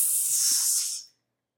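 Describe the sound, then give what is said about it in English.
A voice imitates a snake's hiss: one steady, breathy high-pitched hiss held for about a second before cutting off into silence. “The snakes are just like.”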